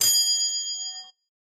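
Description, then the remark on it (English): A single bright ding from a desk bell, struck once with a sharp attack and a clear metallic ring that sustains for about a second before cutting off. No voices. “And then on my desk, I have my bell.”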